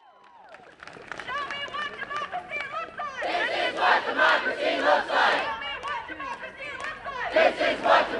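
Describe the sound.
A No Ban protest crowd of students, university faculty and local families chants in loud, rhythmic bursts in the rain at 32 degrees. Many voices shout together in repeated surges, with a quieter stretch of mixed voices at the start before the chanting swells.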